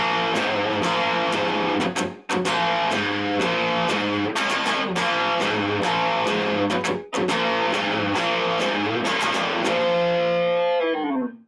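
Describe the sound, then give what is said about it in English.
Crunchy, distorted electric guitar played on a black Telecaster strums thick chords continuously for about eleven seconds, with two brief clipped breaks, then the final chord rings out and fades. No voices. “It's my Black Tele. Black Telecaster. Sounds great. It's crunchy.”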